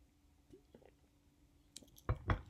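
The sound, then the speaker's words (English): A quiet sip of a beverage from a brown bottle: a few faint clicks, then a short burst of slurping and gulping near the end, with no talking. “And I am currently sipping on a delicious beverage out of a brown bottle.”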